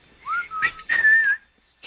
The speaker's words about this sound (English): Have a little whistle.